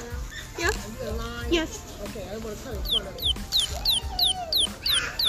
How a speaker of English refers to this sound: Yes. There. It's a little palm pat, something that chirps.